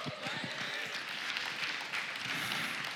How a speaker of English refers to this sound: You keep clapping, you're making me preach longer. It's going to cost you.